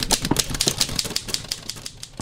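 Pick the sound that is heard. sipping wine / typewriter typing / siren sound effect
typewriter typing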